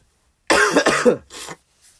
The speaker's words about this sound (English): So, my bad for coughing. I told y'all I'm sick as fuck.